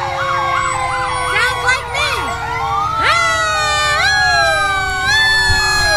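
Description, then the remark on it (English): A loud fire truck siren wails in rising and falling sweeps outdoors during Fourth of July celebrations. A woman sings along, imitating its pitch so the two tones overlap in a duet, over faint crowd noise. “She ran into a fire truck and she's decided to take on the fire truck.”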